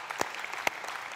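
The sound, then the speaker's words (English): An audience claps in a steady, dense patter, with a couple of sharper individual claps standing out above the crowd's applause. No voices are heard. “Yes, clap.”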